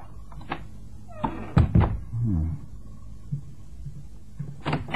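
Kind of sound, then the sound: household object, door being pushed open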